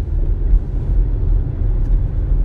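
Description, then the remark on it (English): A steady, low rumble of road and engine noise heard from inside a moving car in bumper-to-bumper traffic, a continuous muffled drone with no voices and no distinct horns or passing vehicles. “It's bumper to bumper traffic, and he almost freaking rear ends me.”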